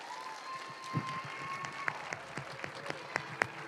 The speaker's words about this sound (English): Let's give these kids one more round of applause for their presentation.